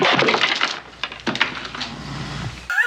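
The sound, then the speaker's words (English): A ceramic mug is smashed during a toast, shattering with a sharp crash, followed by scattered clinks and tinkling fragments settling over a few seconds, fairly loud, with no talking. “And get the punchline where when they cheers, he just smashes the shit out of his mug.”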